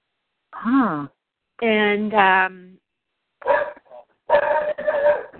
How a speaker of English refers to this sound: Is that your dog? Yeah, they're dogs.